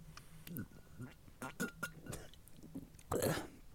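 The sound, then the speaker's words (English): Quiet sipping from a Red Bull energy drink: a few wet mouth clicks and small slurps, ending in a louder slurping gulp near the end, with faint background murmur. “I'm just going to take a sip out of the trusty sponsor of the show.”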